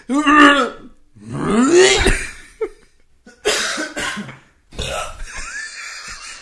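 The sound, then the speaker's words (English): Several loud burps in a row, deep and gargly with a wet, rattling rasp, separated by short pauses; the later ones sound harsher and more throaty. “So out gargly. It sounds like a burp my nephew will do.”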